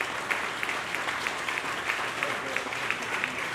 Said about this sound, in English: I want to thank all of our panelists. If we could give our panelists a round of applause.